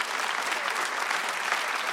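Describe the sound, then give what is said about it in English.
A crowd claps steadily, a dense, even patter of many hands with no pauses or voices breaking through. “Come on, that is worth a hand clap.”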